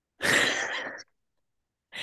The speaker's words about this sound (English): There you go. You have yawned your way through the last half hour.